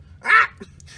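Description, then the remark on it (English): A dog lets out one loud, sharp, distressed yelp or bark, followed by a few faint, brief whimpering sounds from unhappy dogs. No one speaks. “Those dogs didn't seem very happy.”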